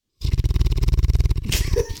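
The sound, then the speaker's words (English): A Mastiff dog snores while dreaming, in a fast, rattling run of low, throaty pulses for over a second, then lets out a rough, breathy snort. No one speaks. “For anybody who is hearing that noise, that is Nigel's Mastiff.”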